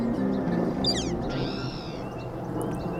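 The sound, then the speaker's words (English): A spotted towhee gives a cat-like mew call, a quick harsh note followed by a longer drawn-out whine, against a steady outdoor background hiss. “A spotted towhee giving its mew call.”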